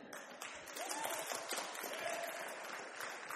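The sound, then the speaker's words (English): A crowd applauds steadily, dense overlapping claps holding an even, fairly loud level for the whole stretch, with a faint voice or cheer briefly rising through the noise. “And if she can clap, so can all of you.”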